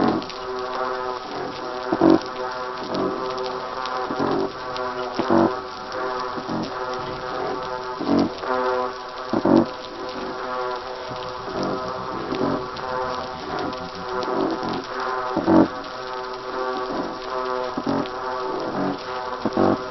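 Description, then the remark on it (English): A dense underwater fish chorus recorded off Port Hedland, Western Australia: low, droning foghorn-like calls of the black-spotted croaker layered with repeated grunts from a pteropontid and a quieter batfish, pulsing steadily over a constant crackling background with no voices. “The low foghorn call is made by the black-spotted croaker, while the grunting call comes from a species called pteropontid.”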